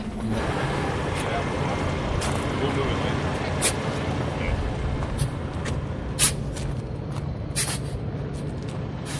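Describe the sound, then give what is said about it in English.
A new custom 2022 Peterbilt 389 semi truck's diesel engine rumbles steadily as a 14-year-old driver floats through its 18 gears, with a few sharp bursts of air hissing over the continuous low drone. “Floats 18 Gears In A New Custom 2022 Peterbilt 389”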